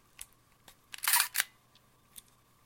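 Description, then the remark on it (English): The shutter of an Olympus IS-1000 film camera fires: a few light mechanical clicks, then a loud, rattling burst of shutter clatter, followed by one more faint click, with no talking. “So that's the shutter going.”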